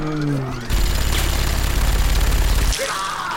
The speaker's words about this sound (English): Okay, so the minigun whirs up, and as it fires in a big line through the streets, you attempt to get up, but fall flat onto your face, hitting into the concrete.